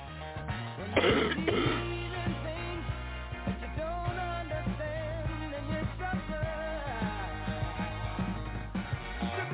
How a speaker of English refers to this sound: I'm going to have to take a little break, and I'll be right back. Got to clear my throat.